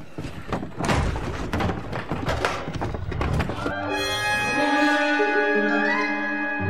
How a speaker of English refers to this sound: I'll tell you, but first, get these tables up against the doors.